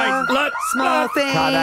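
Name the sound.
alarm siren sound effect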